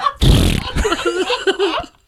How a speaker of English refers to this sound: Yes, we have a fart noise now. Yes, man. Do it again. That was bad.